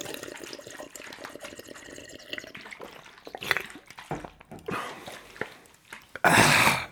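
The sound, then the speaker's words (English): Someone sips a Major Melon soft drink: quiet liquid gurgles and a few short slurping bursts, ending in a louder, breathy fizzing rush. “I just want to take another sip here, and then we'll get serious here.”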